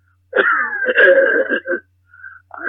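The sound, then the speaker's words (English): A loud, raspy hacking cough drawn out over more than a second with a groaning, wheezy quality, followed by a short faint whine and the start of another rough vocal burst. “I still got that cough, you know.”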